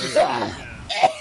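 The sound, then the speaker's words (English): Two short, rough coughs from a person, the first a bit longer and the second following about a second later, with a raspy, throat-clearing quality. “This segment where I cough and die.”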